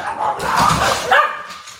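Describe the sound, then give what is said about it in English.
A dog barks, two loud, harmonic barks in quick succession with a brief whine-like tail, no one talking over it. “Yeah, the dogs love Charlie Lindgren, apparently.”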